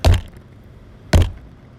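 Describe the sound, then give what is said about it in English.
Two loud, sharp bangs about a second apart as a closed can of spotted dick sponge is struck against something hard to try to open it, each with a heavy thud and a quick clattering decay. No one speaks. “Can I keep banging it?”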